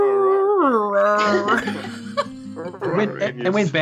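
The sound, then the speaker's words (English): A dog lets out a long, wavering wolf-like howl with sliding pitch, loud, followed by people laughing and talking over its fading cries. “I mean, I'm watching Marley have that existential crisis, but in wolf.”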